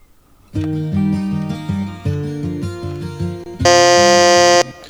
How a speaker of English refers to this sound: Get our buzzers ready. All right. You recognize that, right? You just wanted to give me a chance? No, you were just quicker to the buzzer. Okay. Okay, your buzzer's reset.